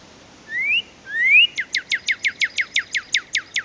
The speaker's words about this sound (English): They begin to sing in the late winter, early spring, and you see that male cardinal dashing across your yard to take up a post and sing its brilliant whistled song.